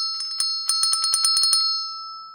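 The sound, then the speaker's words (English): A small bell rings in a quick flurry of about a dozen bright strikes, fairly loud, then its clear metallic tone lingers and fades away. It is rung to give a note for singing. No one speaks. “Oh, I call the bell.”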